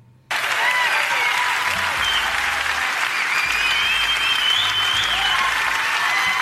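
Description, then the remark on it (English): Sustained audience applause during a speech, a dense wash of many hands clapping at steady volume, starting abruptly and continuing for several seconds with faint crowd murmur underneath. “She does not know how to handle applause breaks.”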